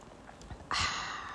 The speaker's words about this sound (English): But it's 8:45 in the morning, so I'm having my coffee. So let me get a coffee sip right quick.